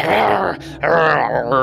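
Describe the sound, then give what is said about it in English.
A person imitates the growl of a dog just brought out of unconsciousness, with a raspy, throaty rumble in two loud bursts separated by a brief breathy pause. “So you bring this dog out of unconsciousness and it immediately starts like...”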